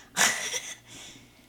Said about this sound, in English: for yawning in the mic.